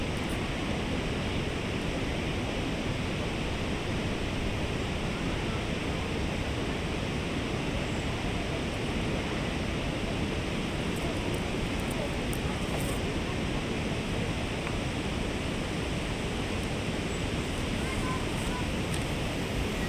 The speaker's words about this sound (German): Direkt voraus ist das Tosen der Cameron Falls zu hören. Das Wasser schießt in Kaskaden die Felswand hinunter und schlägt mit voller Wucht auf die Felsen darunter.